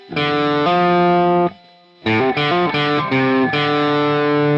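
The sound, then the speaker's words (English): A loud, distorted electric rhythm guitar plays a hammer-on from the open A string to the third fret, the low note hammered up and sustained, then after a short pause a quick run of hammered notes rings out. “So what you do is you do a hammer-on from open A string to third fret, and then.”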